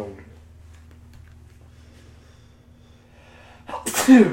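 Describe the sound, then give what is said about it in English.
A single loud sneeze bursts out near the end after a quiet stretch with a faint low hum and soft ticking in the background. “Oh, sorry, I've just been sneezing.”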